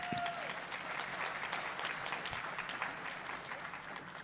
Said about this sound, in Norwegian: Barnepastor, ja. Ja, gi han en klapp for det.